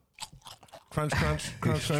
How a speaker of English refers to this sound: Crunch. That's hot.